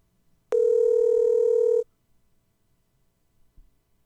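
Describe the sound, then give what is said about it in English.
A telephone dial tone: one loud, steady electronic hum that holds for just over a second and then cuts off abruptly, followed by quiet with a faint soft knock near the end. “I hope it's not my new phone.”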